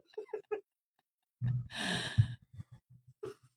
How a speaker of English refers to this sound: Why are you sniffing it? I don't like this.